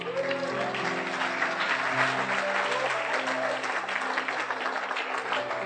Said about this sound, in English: In Jesus' name. Clap for Jesus.